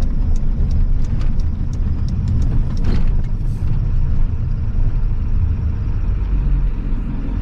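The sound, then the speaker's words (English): A heavy truck towing a loaded trailer drones loud as it pulls away at about half throttle in eco mode, a steady deep rumble with faint ticking and rattles early on, no voices. “So again, this is about a half throttle takeoff with it in eco mode.”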